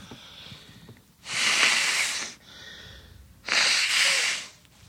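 human body sound, person blowing their nose

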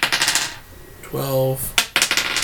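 household object, dice being rolled

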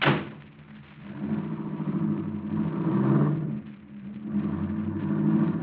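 vehicle, car engine running

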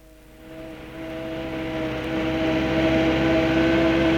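vehicle, truck engine driving

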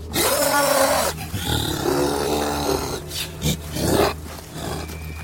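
sound effect, monstrous creature roaring

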